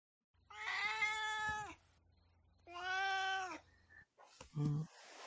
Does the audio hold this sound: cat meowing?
yes